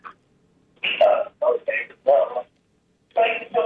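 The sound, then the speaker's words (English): A radio broadcast plays back faintly through a phone line, with thin, tinny telephone-band speech in short choppy bursts and brief gaps between phrases. “And get you to turn off your phone. I mean, the radio, please.”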